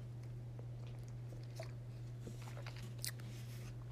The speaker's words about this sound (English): So let me take a little sip of coffee and get a little motivated here.